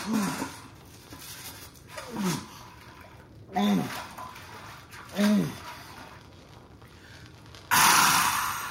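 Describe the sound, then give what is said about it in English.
Four resonant water drops plop one by one into a bucket on the ground next to a man, spaced about a second and a half apart, followed by a sudden burst of rushing, hissing noise at the end. “Drops of water in bucket on ground next to him.”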